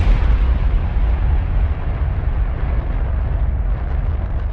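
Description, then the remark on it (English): A rocket's engines roar to life in a loud, continuous rumble, heavy in the low end with a rough crackling texture, holding steady throughout with no voices. “After a wait she could not measure, the rocket's engines roared to life.”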